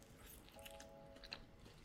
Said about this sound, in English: So I'm dunking half of it into my milk and I'm gonna let it sit there for like a good 10 seconds. You know, we want that outside cookie to be soggy. I think that's good. I'm gonna let some of the excess milk drip off and then we bite into it.